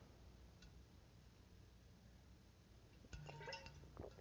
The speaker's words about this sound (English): I'm sorry if my throat, my voice sounds weird. I've been trying to drink water. I don't know what's going on with my throat. Let me try drinking some water real quick.